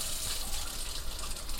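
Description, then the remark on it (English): Cold tap water streams steadily through a nozzle pressed into the cover of a refrigerator pitcher, filling its inner chamber, a continuous rushing and gushing sound with no talking. “pull it out, and I'm going to stick the nozzle into the top of the cover, and it's touching the pressure valve, and when I turn on cold water, I will press the top of the nozzle, and it's going to fill the inner chamber of the refrigerator pitcher.”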